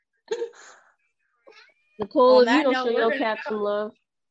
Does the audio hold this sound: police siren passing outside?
no